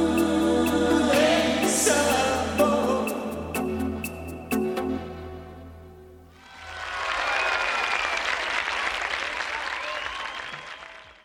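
A song's final bars ring out with sustained tones and sharp hits, then fade as a dense burst of audience applause swells in and continues loudly to the end.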